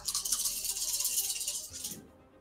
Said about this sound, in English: That was a lot of dice. Yeah, I swear that he rolls extra dice just to make us feel intimidated. It's 2 attacks. No. That sounded like 50 dice in your hand.